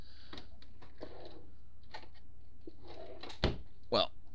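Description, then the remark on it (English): A drawer where joints are kept rattles and slides, with scattered wooden clicks and knocks, then a sharper bang near the end as it is shut. Faint murmuring sits underneath. “I need to get another joint from the joint drawer.”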